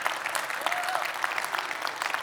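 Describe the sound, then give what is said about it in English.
A church audience claps together in a dense, steady burst of applause for men having given their lives to Jesus Christ at the previous night's gathering, many hands overlapping into a continuous crackling wash with no voices standing out. “Yeah, we can clap on that.”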